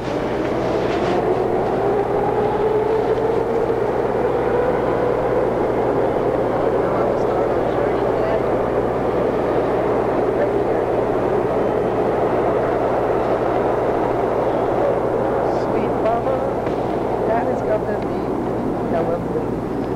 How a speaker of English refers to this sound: Train.